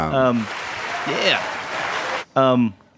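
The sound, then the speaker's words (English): A burst of crowd applause, dense and steady with a brief whoop in the middle, cuts off dead in an instant with no fade. Voices talk briefly just before and right after. “I love the hard, like no fade out. Yeah, yeah. Just like everybody stop clapping.”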